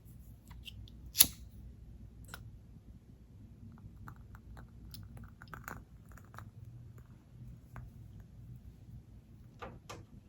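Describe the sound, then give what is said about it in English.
A sharp click as a lavender and cedarwood aromatherapy candle is lit, followed by soft, irregular crackling pops over a low, steady hum, with no one talking. “I love the crackling, of the fire.”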